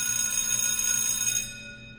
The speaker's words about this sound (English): And just so we're clear, let me ring the bell on this. Just so we're clear, guys.